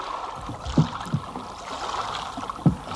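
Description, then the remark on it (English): A small boat is dragged through water under a wall, with sloshing and swirling throughout and a few heavier thuds and splashes spaced irregularly, with no voices. “We'll drag the boat under the wall.”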